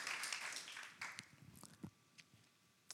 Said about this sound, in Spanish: Así que también démosle un gran aplauso al equipo de intercesión, porque ellos son los que han sostenido la iglesia en este tiempo.